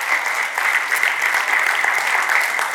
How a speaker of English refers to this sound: And so no longer shall we be the church who looks like a closed down Kmart because of the parking lot. Now you can applaud. There we go.